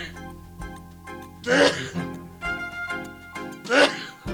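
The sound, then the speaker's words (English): Two sharp, explosive sneezes from a person with hay fever, about two seconds apart, each a loud breathy burst, with softer voiced sounds and a steady tonal hum in the gaps. “And I've got hay fever, I've got to sneeze.”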